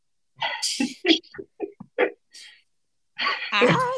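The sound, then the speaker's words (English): Several short coughing bursts come in an uneven series, followed after a brief pause by a longer, rougher fit of throaty, voiced coughing. “You know, by the way I'm coughing, by the way I'm talking, by the message I sent you.”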